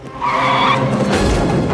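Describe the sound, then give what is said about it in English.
A car driven by David Spade skids, its tires screeching loudly for about a second as it runs a man over, then gives way to a rough roaring rumble of the vehicle. No one speaks. “David Spade runs him over.”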